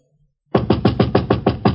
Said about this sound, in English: Sorry, I knocked, and when you didn't answer, you broke in. It is a Yankee custom to enter a man's apartment without his permission. We usually answer the door when someone knocks.